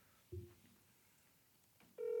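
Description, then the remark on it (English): A phone call being placed to a radio listener: a brief low beep, a quiet pause, then a loud, steady ringing tone begins and carries on. No one speaks. “He said he was done with dinner and it was okay to call.”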